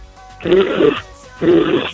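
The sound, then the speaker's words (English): A caller on the afternoon zoo show on 102.5 The Bone imitates a rhino with two rough, throaty bursts, each about half a second long, separated by a short pause. The bursts are loud, low and grunting with a raspy, breathy edge. “And make a rhino noise before you leave.”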